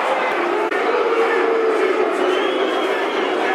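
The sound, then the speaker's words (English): A large football stadium crowd roars in loud, sustained protest at a referee's decision after a tackle, a dense wall of shouting and howling voices that holds steady without a break throughout. “Mill players speaking to the referee, crowd howling as you can hear.”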